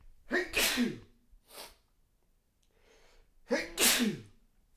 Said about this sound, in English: Hang on, I'm going to sneeze.